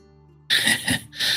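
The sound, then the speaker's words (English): A loud, shrill scream erupts after a moment of low, quiet hum, breaking briefly before a second harsh burst; it is piercing and cuts off abruptly. “We hear one last scream as the screen goes dark.”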